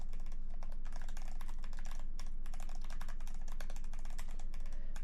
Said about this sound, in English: I'm getting really good at typing this in.